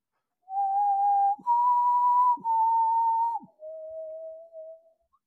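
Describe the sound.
A person whistles a short tune of four long, steady notes: three similar mid-pitched tones, then a lower final note. The whistling is clear and alone, with brief breaths between notes.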